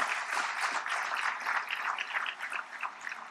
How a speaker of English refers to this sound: So let's give them a round of applause as well.